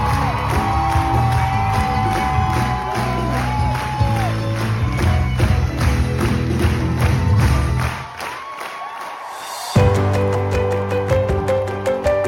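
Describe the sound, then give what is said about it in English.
A theatre audience at a play's curtain call bursts into loud, sustained applause, with whoops and shouted cheers riding over dense clapping; the roar dips briefly near the end, then surges back. “But from that point on, it was just applause, cheering, you know, joy.”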